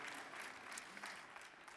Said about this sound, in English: For those of you that are joining us online, we all just want to welcome you and give you, yes, we don't know where the cameras are, but we're clapping for you.